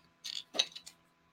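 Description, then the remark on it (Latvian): A few short plastic clicks and scrapes as the battery cover of a vape mod is pushed and snapped shut, with a sharper click in the middle and no talking. “Kārtīgāk vajag piespiest. Ok, ir ciet.”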